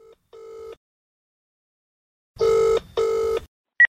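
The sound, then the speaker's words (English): Patrick Keelty's telephone rings before his voicemail greeting: a couple of faint, short electronic tones, then two louder, buzzy rings in quick succession, with a brief blip at the end. No one speaks. “And as you can imagine, Patrick Keelty's phone has been hopping.”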